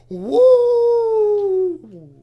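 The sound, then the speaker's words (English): A man's voice imitates a werewolf howl, one loud sustained note that rises, holds steady for over a second, then slides down and trails off, with no other talking. “Consider it a full moon, and this old werewolf is about to go howling.”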